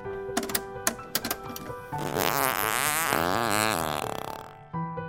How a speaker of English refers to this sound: A flatulist is someone who can inhale air into their butt and fart on command in a musical or amusing manner. Pujol performed his act at the Moulin Rouge in Paris and was a master of his craft.